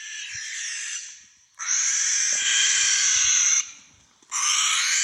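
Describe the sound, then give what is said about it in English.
A barn owl screeches in long, harsh, raspy bursts, three drawn-out hissing screams separated by short pauses, loud with no one talking. “Apparently, barn owls. Not had no idea. Yeah, not barred owls, but barn owls make this fucking sound.”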